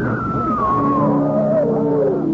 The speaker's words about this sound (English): Suddenly, a woman screams.